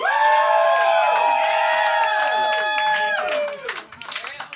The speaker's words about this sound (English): I'd like you guys to give a round of applause for my buddy